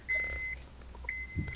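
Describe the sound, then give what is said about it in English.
A vehicle's backup beeper sounds twice, each a steady, high-pitched tone lasting about half a second with a pause between, over a low engine rumble and a brief thump. “Oh, wait for Lieb to stop reversing.”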